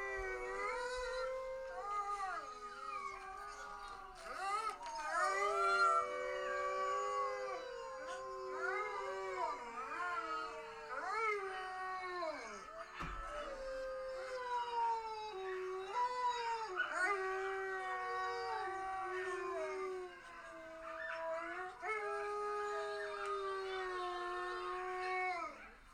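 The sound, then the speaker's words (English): Several wolves, including ones named Nietzsche and Chanti, howl together in a sustained, overlapping chorus, their long wavering notes sliding up and down for nearly half a minute without a break, after people howled first to start them. “And when the wolves start to howl, you'll hear the difference.”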